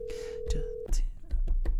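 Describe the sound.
A phone ringing tone hums steadily for almost a second, then cuts off abruptly, followed by short muffled bursts of voice and clatter.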